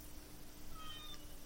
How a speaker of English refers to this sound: There's kitten Kira. Another cat. We have so many cats.